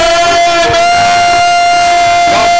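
An audience shouts a loud, sustained amen together, a massed roar of many voices that holds steady for a couple of seconds, with a constant high ringing tone running underneath.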